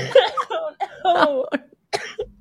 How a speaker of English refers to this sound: I'm laughing. I'm going to cough. Oh my gosh, she's dying.